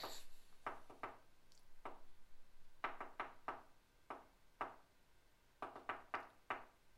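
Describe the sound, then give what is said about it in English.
A series of sharp knocks tapping out a Morse code message in irregular clusters, quick runs of three to five raps separated by short pauses, with no voices. “For those of you who don't know Morse, he just told you to go fuck yourself.”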